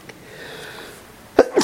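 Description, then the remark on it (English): A single sharp sneeze bursts out after a quiet stretch, with a brief voiced onset followed by a loud, breathy explosion that quickly fades. “excuse me”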